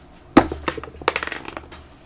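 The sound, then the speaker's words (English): Dice rolled for an attack hit a hard table with a sharp clack, then rattle and tumble in a quick run of small clicks that gradually slow and fade. Fairly loud, with no voices. “So roll an attack.”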